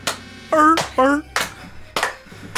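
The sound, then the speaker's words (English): Four sharp hand claps at a steady, slightly uneven pace, with a voice letting out two short honking barks between them, an imitation of the Adam Sessler seal clap. “It was a seal clap, man, like hardcore”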